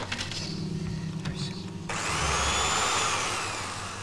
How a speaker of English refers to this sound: Is it weird that I have that exact drill at home? I think we all have that exact drill at home somewhere. It's not spinning. It's not spinning.